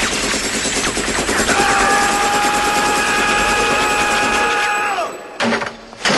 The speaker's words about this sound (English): Either when he's in the helicopter blowing everything up, or when he's in the room just, killing the computer?